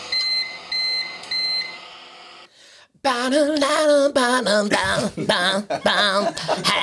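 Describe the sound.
A microwave oven at home beeps three times in a steady rhythm, high-pitched electronic tones, followed after a short pause by a loud human voice.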